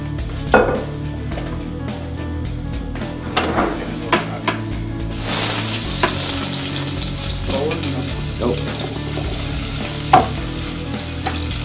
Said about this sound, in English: Take your onions, throw a little olive oil in that pan.